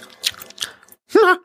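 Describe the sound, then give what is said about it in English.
Wet smacking and clicking of someone chewing gum in a few quick bites, followed by a short voiced sound like a brief laugh or murmur. “The laughter and the chewing gum, the cadence”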